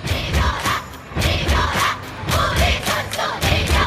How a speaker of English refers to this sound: They're kind of cheering, we are one, we are one. Be strong, or it's okay when the other team scores a goal.